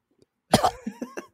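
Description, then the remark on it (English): A loud cough bursts out, followed by a few shorter hacking coughs in quick succession, from someone choking on water. “I'm choking on my water. All right, y'all, you can find us on... Okay, don't cough while I'm trying to finish this.”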